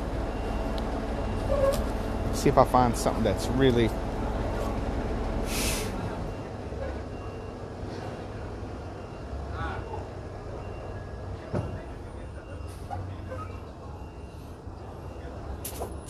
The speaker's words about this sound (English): And here comes, we're in LA, so there's always trucks. It's always gonna be trucks. Let me let this truck go by.